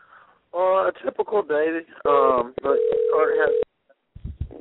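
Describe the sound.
A steady telephone dial tone hums for about a second beneath a man's animated talking, preceded by a brief tonal blip, as he places a call while already on another phone call.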